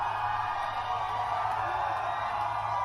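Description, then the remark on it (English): A large crowd at a Trump rally in Reading, Pennsylvania roars continuously with cheering and scattered whoops, a dense, steady wall of sound, with no pauses or talk standing out. “Here's Trump showing up in Reading, Pennsylvania today. Play it for me.”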